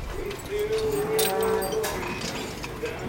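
Dairy cows low inside a barn on an organic dairy farm in Hardwick, Vermont, with 70 cows and about 40 milking. One long drawn-out moo stands out over a busy background of shuffling and metallic clanks, with other animals murmuring faintly.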